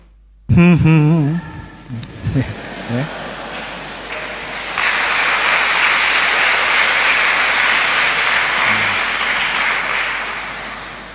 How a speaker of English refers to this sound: Let that applause be for God who loves us totally.